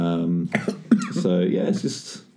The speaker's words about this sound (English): Don't choke on it. It's all good. I'm just so stoked. I'm coughing. I'm choking on my beard.